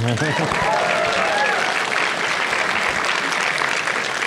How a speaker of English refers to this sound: You can clap.